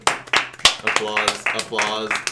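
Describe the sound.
A handful of sharp, uneven claps from a small audience, quickly joined by voices cheering and calling out that continue over the fading applause.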